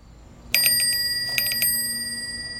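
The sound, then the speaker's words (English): A bicycle bell passing by a house rings sharply twice, a quick double ding followed by another pair of rings, each leaving a bright metallic tone that lingers and slowly fades. It is fairly loud, with no one talking. “That night, about an hour after Lucy heard the bell pass by her house, she went online and complained to the bike girl about her doctor.”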